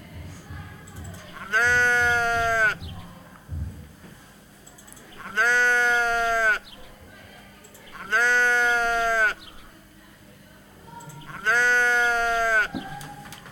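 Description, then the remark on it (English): A sheep bleats four times, each call a drawn-out, quavering baa about a second long, spaced a few seconds apart, loud against a quiet background. “In English? A sheep? A sheep, muy bien.”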